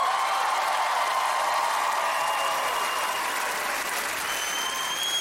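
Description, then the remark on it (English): A Chicago audience at a comedy tour show claps steadily for about five seconds, a dense, even wash of many hands at a constant loudness with no voices speaking over it. “I said, don't applaud.”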